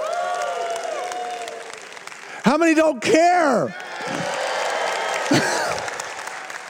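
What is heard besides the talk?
audience applause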